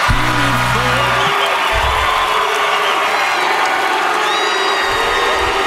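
A huge arena crowd at an awards show chants a long, drawn-out low call as a country singer goes to accept an award. It sounds like booing but is not booing. A steady loud roar of cheering and whoops carries through to the end.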